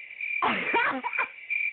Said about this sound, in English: He getting the goddamn cricket. Cricket.